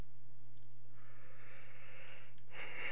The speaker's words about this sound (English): You have to breathe before the yawn. But I think the bring it in part of the yawn is better.